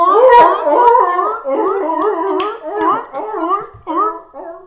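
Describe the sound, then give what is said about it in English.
A loud chorus of seals barking, their wavering, honking calls overlapping in a steady, crowded stream with no pauses and no talking. “I have all the votes of these seals, see? They're all fed by me.”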